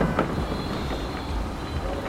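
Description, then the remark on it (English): A steady, heavy rumbling roar fills the whole stretch, like an underground train racing through a tunnel in Moscow, with faint clatter riding on top and no voices. “Then I imagined other parts of the city chiming in, crowds gathered in protests, trains racing in the tunnels, Moscow's never-ending traffic.”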